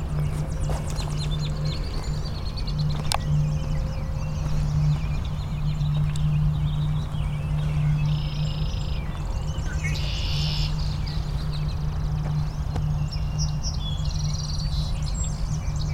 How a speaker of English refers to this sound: There will be some sound as I walk though. Maybe not on this ground as much because it's hard dirt. But if I get into grass, you'll really hear it. Walk on some mulch here.